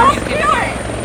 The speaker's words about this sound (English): You can hear the helicopters.